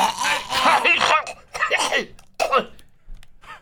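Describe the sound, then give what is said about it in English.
A person imitates a cat hacking up a hairball: a long, raspy retching burst followed by two shorter gagging heaves and a faint final wheeze, loud. “That was a fun night when he coughed up the hairball.”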